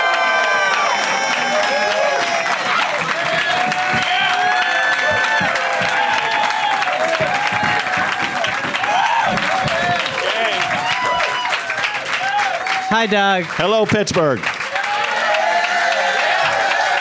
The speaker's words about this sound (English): So please, everybody, give it up for Matt Braunger, Gareth Reynolds, and Steph Tolev!